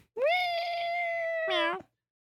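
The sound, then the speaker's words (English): A person imitates a cat's meow: one long, sustained, nasal cry that holds steady before a short upward-bending tail, fairly loud, ending abruptly in silence. “Oh, you think you can do it better? Meow. That's a meow.”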